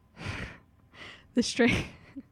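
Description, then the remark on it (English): A voice acts out Bella's gasp: a couple of breathy intakes, then a sharp voiced exclamation, fairly loud, with a brief quiet catch of breath at the end. “Bella gasped.”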